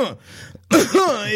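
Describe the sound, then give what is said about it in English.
A short, strained rasp gives way to a loud burst of harsh, throaty coughing with a voiced, hacking edge that carries through to the end: a coughing fit after taking a hit from a joint. “Dale takes the joint and hits it, exploding into a coughing fit.”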